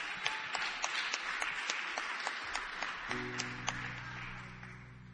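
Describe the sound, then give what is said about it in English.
A church audience claps steadily in a broad wash of applause with regular sharp hand strikes; partway through, a low sustained organ-like tone enters beneath the clapping as it carries on. “Our last testimony, continue clapping.”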